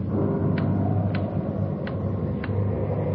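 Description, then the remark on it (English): A loud clock ticks steadily, five sharp clicks spaced evenly about every half second, over a constant low rumbling drone while it is windy outside, with no one speaking. “Loud clock, ain't it?”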